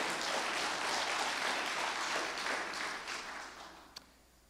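A church audience claps their hands together during a sermon in a dense, steady wash of applause that holds for a few seconds, then tapers off and fades, ending with one last stray clap.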